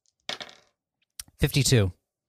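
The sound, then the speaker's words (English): A short clatter of dice being rolled across a tabletop, followed by a sharp click and then a brief spoken word. “Now roll again.”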